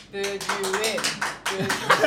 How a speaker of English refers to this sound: So let's start with Netscape Navigators. If you think they should win this debate, applaud now. If you feel that the Internet Explorers convince you that spiders should not inherit the Earth, clap now.